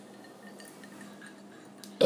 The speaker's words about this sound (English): That wasn't a good burp.